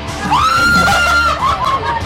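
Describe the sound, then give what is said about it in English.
A loud, high-pitched scream rises sharply and holds for over a second before breaking off, set against a busy background of crowd noise and chatter, at Walsall Scare Maze. “That's the loudest I've heard you scream in a very long time.”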